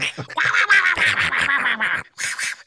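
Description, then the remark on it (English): A person imitates an angry Donald Duck: a loud, raspy, nasal squawking stream runs for about two seconds, stops briefly, then ends in one more short, sputtering burst. “Just imagine Donald Duck and you can hear it.”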